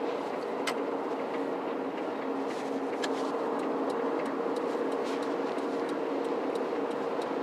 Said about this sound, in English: Metro traffic fucking sucks, dog. I'm sure traffic be fucked up everywhere. Don't get me wrong. But like this shit I'm driving in today is fucking horrible, man. It's 10 o'clock in the morning.